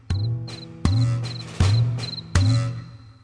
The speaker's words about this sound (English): The grasshopper princess is easily seen chirping away in the meadow so green.